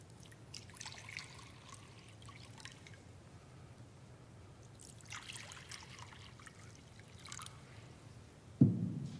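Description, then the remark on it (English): Water trickles and splashes softly as it is poured into a baptismal font during a baptismal prayer, a quiet, uneven stream over a low background hum, ending with a brief dull knock. “Pour out your Holy Spirit, and by this gift of water, call to our remembrance the grace declared to us in our baptism.”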